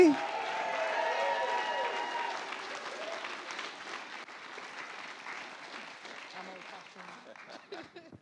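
Steady audience applause with many hands clapping in a dense, crackling wash, strongest at first and slowly tapering off as a few individual claps stand out near the end.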